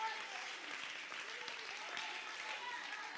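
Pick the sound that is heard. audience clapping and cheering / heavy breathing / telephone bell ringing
audience clapping and cheering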